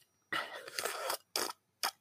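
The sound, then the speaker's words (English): Wet drinking sounds: a longer slurping sip followed by two short, quick swallow clicks, with soft gaps between them and no talking. “That was me drinking and swallowing.”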